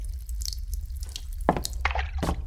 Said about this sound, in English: I walked over to the holy water fountain. Pulling a small bottle from my coat, I plunged it into the water until it was filled up.